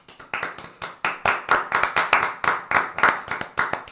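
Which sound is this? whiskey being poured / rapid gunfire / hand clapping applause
hand clapping applause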